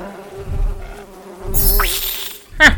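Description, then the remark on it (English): A steady buzz of sap bugs drones throughout, its pitch wavering as the insects circle, with a louder whooshing pass midway and a sharp rising burst near the end. “What of the buzzing? Why won't he flinch? Won't sap bugs interrupt his reign?”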